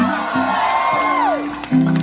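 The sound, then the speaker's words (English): A crowd cheers and whoops at a concert, several voices yelling together in a loud, steady roar, with one high whoop sliding down in pitch partway through. “Make some noise!”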